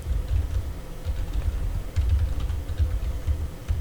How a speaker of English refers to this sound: No, I'm going to grep DNOTC. That is in town send gift. Sorry about all the typing.